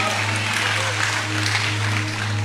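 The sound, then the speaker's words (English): A church audience claps steadily, giving the Lord about three seconds of hand clap and praise before being seated, in a dense, continuous wash of applause with scattered voices, over a constant low hum throughout. “Give the Lord about 3 seconds of hand clap and praise before you're seated today.”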